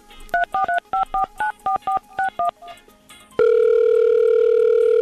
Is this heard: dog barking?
no